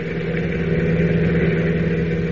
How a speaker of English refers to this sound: Meanwhile, miles away, Clark Kent, having been led to believe he is being taken to the executive offices of the CNL Railroad for an exclusive story, is riding in a car driven by one of the Wolf's henchmen, a man named Kino.